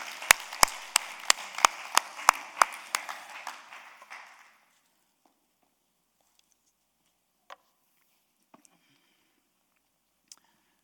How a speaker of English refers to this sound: Yeah, now we can clap.